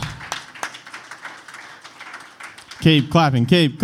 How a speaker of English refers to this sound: Keep clapping. She's going to make it all the way to the stage. Look at her go. Keep clapping.